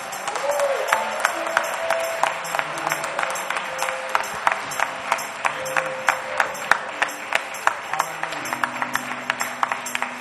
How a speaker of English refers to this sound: Those of you who were blessed this afternoon, raise a clap offering to the Lord.